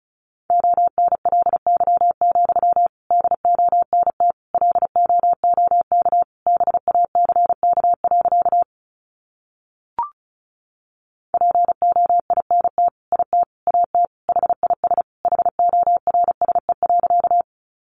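Rapid Morse code at 35 words per minute sending sentences built from the top 300 words: a single steady mid-pitched tone keyed in quick dots and dashes, pausing briefly around a faint click midway before the fast keying resumes.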